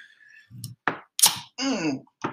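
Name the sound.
beer can cracked open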